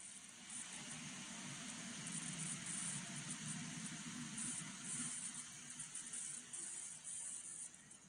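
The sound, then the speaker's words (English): Steady electronic static hisses throughout, a dense, continuous wash of noise with a bright upper edge and a low hum underneath, fairly quiet and unbroken, with no voices. “This directly follows the electronic static, another snap, then I groan in my sleep.”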